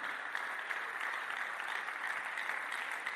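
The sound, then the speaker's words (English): A crowd applauds steadily, many hands clapping at once in a dense, even wash of sound that holds at the same level for a few seconds, with no voices on top. “Can I get a clap of all the Marys in the house?”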